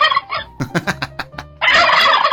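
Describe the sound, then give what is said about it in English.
Two turkeys, pardoned at the White House for Thanksgiving, gobbling loudly: a rapid burst of warbling gobbles followed by a dense, overlapping chorus of gobbling from both birds. “That was an exclusive with the two turkeys that were pardoned in the White House this week for Thanksgiving.”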